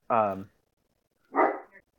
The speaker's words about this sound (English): Sorry, my dogs are barking.